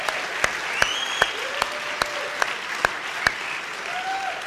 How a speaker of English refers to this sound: And many of you I know appreciate the incredible music. Let's just applaud the incredible music here.